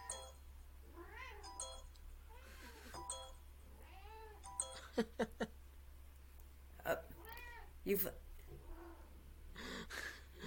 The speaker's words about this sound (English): Okay, well, we can all hear the cat at the moment.